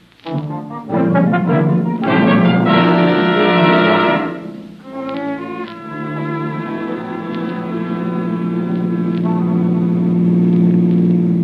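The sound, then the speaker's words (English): A car engine hums steadily as a car drives past, rising and shifting in pitch, with a continuous low rumble throughout and no talking. “Hey, That car that just passed us”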